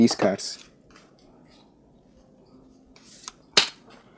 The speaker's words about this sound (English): We have a 2 minute time glass, and also we have here our cards. I'll start off by shuffling these cards.